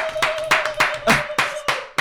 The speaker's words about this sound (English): Give claps so loud.